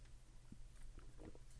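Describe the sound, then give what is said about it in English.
A few soft mouth and handling sounds, a faint click followed by quiet slurping and swallowing as someone opens a Thermo Tank copper, vacuum-insulated water bottle and sips still-cold water, over a low steady background hum. “I just took a sip and it is still pretty cold from yesterday.”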